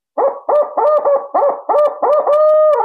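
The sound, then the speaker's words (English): A barred owl locator call: loud hoots in a quick rhythmic run of about seven notes, ending in a longer drawn-out hoot, with no talking. “But many times they will gobble at a crow or a hawk scream or a barred owl.”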